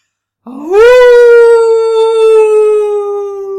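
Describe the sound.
A person doing a werewolf impression lets out a single loud howl, swooping upward at the start and then holding a long, steady note that slowly sags as it fades out.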